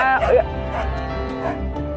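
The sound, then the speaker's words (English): A dog on a farm barks several times at an uneven pace, each short bark standing out over a steady, humming tonal background. “Now we have trucks, we have cows, we have sheep, we have goats, we have dogs.”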